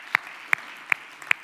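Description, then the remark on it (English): An audience claps in a slow, steady rhythm: four crisp, evenly spaced claps over a faint background hum, hands striking together in unison. “You should clap.”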